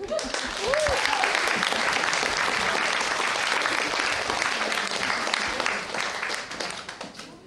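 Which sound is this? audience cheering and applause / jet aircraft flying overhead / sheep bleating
audience cheering and applause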